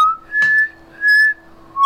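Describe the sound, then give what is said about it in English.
A person whistles a short tune of clear, sustained notes, rising and falling in pitch with brief pauses between phrases, fairly loud with no talking. “Good whistling, babe.”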